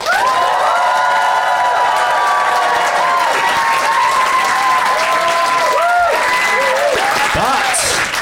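A live Phoenix audience bursts into sustained, loud applause mixed with cheering and whoops, clapping to vote on who is in the right, the clapping dense and continuous for several seconds with high shouts rising over it.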